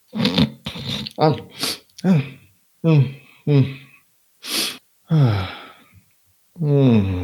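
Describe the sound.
A voice imitates a soft, hollow snore, with a series of short breathy snorts and sighs, some voiced and some airy, repeated at uneven intervals.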